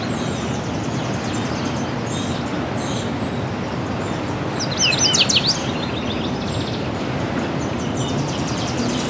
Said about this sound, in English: Nashville warbler here.